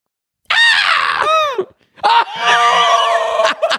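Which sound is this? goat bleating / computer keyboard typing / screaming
screaming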